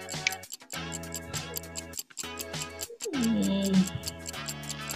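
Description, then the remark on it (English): Steady, rhythmic ticking of a timer clock during a timed word game runs through the whole stretch, layered over bright tonal music with a brief sliding tone near the end, no speech. “All right, so let me give you the timer and let me reset the clock.”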